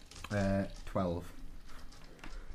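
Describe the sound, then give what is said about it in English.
A sneeze in two loud voiced bursts, a drawn-out intake sound followed by a sharp falling release, then quiet background noise with faint rustling. “Bless you.”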